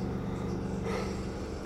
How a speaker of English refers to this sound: I have a bad habit of yawning when I'm on podcasts.